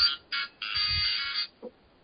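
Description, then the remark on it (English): An electronic phone ringtone plays in three quick bursts of bright, buzzy chiming, the last one long and sustained, fairly loud, followed by a brief soft low thump. “Phone. We got Metamorpho's ringtone.”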